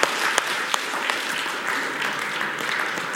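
An audience applauds a guest speaker who shares the word with them, a dense wash of many hands clapping at an even level for about three seconds, with a few sharper individual claps standing out near the start.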